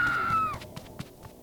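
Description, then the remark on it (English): A woman lets out a shrill, sustained scream of terror for about half a second as she runs into a bedroom, its pitch sliding slightly downward, followed by a few faint soft thumps. “Paola wrestled herself free and ran into her mom's bedroom, screaming.”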